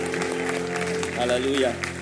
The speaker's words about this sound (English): Let's put our hands together for them.